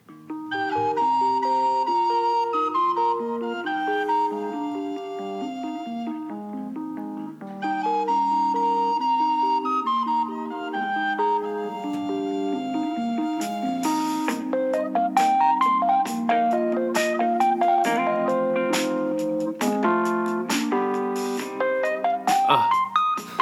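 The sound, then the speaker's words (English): A voice hums the theme tune of the TV show The Wonder Years, a steady stream of sustained, clearly pitched notes moving up and down in a melody. Sharper clicks and taps join in over the second half. “I know I'm going to hum the theme song for Wonder Years.”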